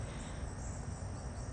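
A steady, dense drone of crickets chirping outdoors outside student dorms, blending into a continuous high-pitched wash over a soft low rumble, fairly quiet and unbroken with no voices.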